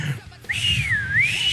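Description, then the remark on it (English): A person whistles a single wavering tone close up, the pitch dipping and rising again for about a second over a breathy, noisy background. “I can't whistle that good.”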